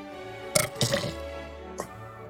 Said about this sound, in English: I can burp. It's my show. I don't have to have manners. Yes, I apologize for being uncouth like that. That's disgusting.